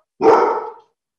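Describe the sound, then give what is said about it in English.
A dog named Thor lets out one loud, full bark lasting about half a second in a working shop, then falls silent. Nobody speaks, and a faint click follows near the end. “You're letting people know that I'm here, huh?”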